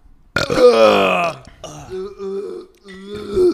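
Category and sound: human body sound, burp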